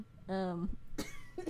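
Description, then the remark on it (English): An abrupt cough bursts out right after a brief voiced sound, followed by a little breathy noise; it's short and moderately loud. “I haven't been coughing all day.”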